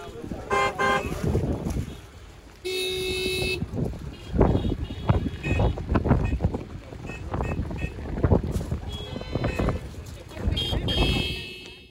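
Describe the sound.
Ship horns hoot in several sustained, steady blasts, one especially loud and brassy, over gusty wind noise and a murmur of crowd voices, as crowds in the Falklands bid farewell to the ship James Clark Ross leaving for the UK on a grey, cold, rainy day.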